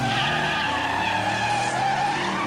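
Four race cars roar off together at the green flag at the start of a one-lap race, engines revving hard with a screeching, skidding whine of tires, loud and continuous with no voices.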